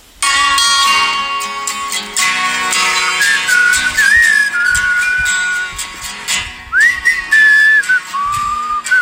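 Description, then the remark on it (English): Someone whistles a tune, holding long clear notes with a few upward slides between them, over a dense, busy backing that runs continuously underneath for about nine seconds. “Do you not know how to whistle? Of course I do. Do it. I was just doing it. No, that was me.”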